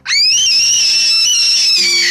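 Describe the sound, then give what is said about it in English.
A single loud, high-pitched scream rises sharply and holds steady for about two seconds, piercing, with no talking over it. “Yeah, I want to scream.”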